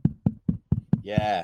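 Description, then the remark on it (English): A voice mimics the wrestling crowd at Full Sail during a match: five quick, evenly spaced low thumping beats, then a sustained, breathy rising shout like a cheer, done by one person. “I'm the crowd at Full Sail while a match is happening.”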